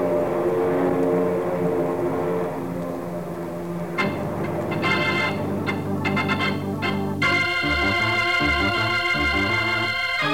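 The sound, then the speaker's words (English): Propeller planes drone loudly overhead during a mock aerial attack exercise, a thick, continuous engine roar with layered humming tones that shift and swell as the aircraft pass, with no talking. “Here come the planes now, ready to drop their eggs in the Citadel.”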